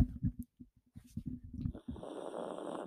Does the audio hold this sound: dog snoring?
yes